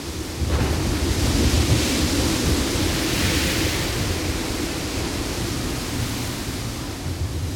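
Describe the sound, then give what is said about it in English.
Violent ocean waves at a port in St. Martin crash and churn in a continuous, loud roar with a deep rumbling undertone. The sound surges in abruptly after a brief moment and stays powerful throughout, with no voices. “The waves erupted, and the ocean pulled him right in with his sailboat.”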